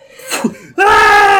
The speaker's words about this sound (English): Wilhelm scream.